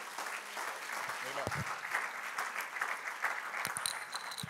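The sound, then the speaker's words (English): A church audience claps their hands unto the Lord in a sustained, dense burst of applause lasting several seconds, steady and fairly loud, with faint voices and brief shouts mixed in. “If you're ready to receive the word, clap your hands unto the Lord one more time.”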